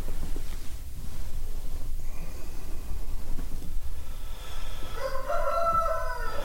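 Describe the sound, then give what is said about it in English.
A rooster crows once near the end, a loud, drawn-out cock-a-doodle-doo rising over a steady outdoor hiss of farmyard background noise. No one speaks. “Roast chicken for lunch, anybody?”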